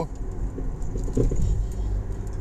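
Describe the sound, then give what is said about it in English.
Steady low rumble of a car interior, a mobile car studio in West Virginia at about 10:39 p.m. on February 2, 2020, with continuous road and engine drone filling the cabin and faint light jingling, like keys, rising briefly in the middle. “Recorded live from the mobile car studio.”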